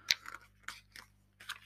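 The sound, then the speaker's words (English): Pages of a book being thumbed through while looking for a football shirt: four or five quick, dry papery flicks and rustles in an irregular rhythm, fairly quiet, with no voices. “This thumbing through this book just makes me want to talk about.”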